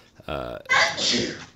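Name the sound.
sneeze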